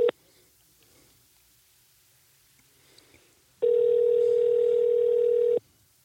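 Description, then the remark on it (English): A telephone ringback tone on an outgoing call: one steady, loud electronic ring lasting about two seconds, preceded by a brief blip and near-silence, with no one talking. “Let's try Gil Hopkins' wife. I haven't talked to her for a long time. Okay. Calling Joanne Hopkins.”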